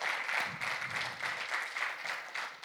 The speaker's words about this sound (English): Now, if you believe that and you already know the authority that you have and the God that will enforce it, go ahead and give God a round of applause for being present in this moment.